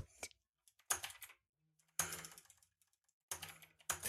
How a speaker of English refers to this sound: Waypoint is typing, .. Oh, caps lock.